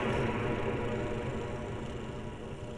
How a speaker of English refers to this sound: He can't even talk in this form. It's like he's trying to... That is the low hum of my energy field.